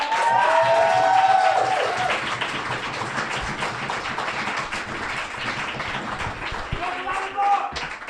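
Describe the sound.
A crowd applauds steadily with dense, crackling clapping that stays loud for several seconds before thinning out, with some brief whoops and voices rising over it.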